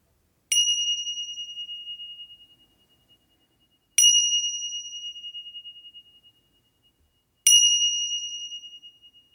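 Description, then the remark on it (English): Three clear meditation bell chimes struck at even intervals to begin a mountain meditation, each ringing out with a sharp attack and a long, shimmering decay into silence before the next. “Go ahead and get comfortable in your meditation position, and we will begin the mountain meditation with three bells.”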